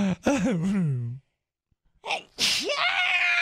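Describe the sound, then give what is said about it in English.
A wavering, drawn-out voiced intake builds up, then after a brief pause a loud sneeze bursts out with a sharp breathy onset and a trailing voiced tail. “Bless you.”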